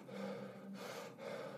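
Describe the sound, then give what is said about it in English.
Heavy, gasping breaths through the mouth, loud, with a harsh inhale and exhale in quick succession, as if a person is imitating being out of breath. “Maybe they're breathing through their mouth”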